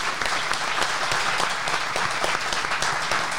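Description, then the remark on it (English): A live audience at Podium Place in the UK, at a Behind the Glass Live event, applauds, steady dense clapping sustained and fairly loud throughout with no one speaking. “We are back at the amazing Podium Place with an audience of lovely people. Give yourselves a round of applause.”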